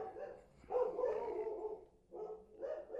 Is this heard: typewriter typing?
no